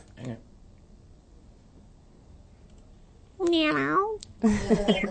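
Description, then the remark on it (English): A person does a drawn-out, fairly loud imitation of a cat's meow, rising then falling, followed by another short vocal burst; a brief faint sound comes earlier after quiet. “Meow.”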